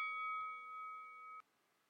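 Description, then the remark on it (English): A single bright bell ding rings out with a clear, sustained metallic tone, holding steady for over a second before being abruptly cut off, leaving near silence. “Champ, that's the bell.”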